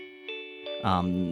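A school bell signalling that homeroom is about to begin rings with a steady, sustained electronic tone that holds a constant pitch, then swells louder partway through and keeps sounding to the end.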